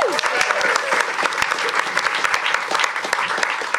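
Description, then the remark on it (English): An audience claps steadily throughout, a dense burst of many hands with sharp individual claps poking through, loud and sustained with no pause. “Round of applause”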